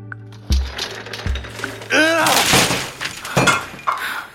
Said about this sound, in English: Did you just knock everything off my desk in a fit of passion?